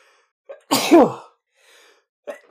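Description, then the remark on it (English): A single loud, explosive sneeze bursts out after a quick intake of breath, followed by a faint exhale and a short sniff at the end. “bear with me, I'm going to sneeze.”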